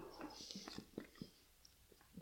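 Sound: sipping beer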